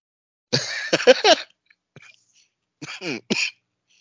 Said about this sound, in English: He's coughing.